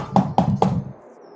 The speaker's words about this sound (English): I'll go knock on Piper's door.